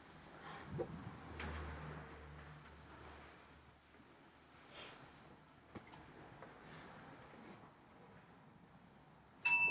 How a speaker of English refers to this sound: Now I'm going to synchronize with the sound of the bell.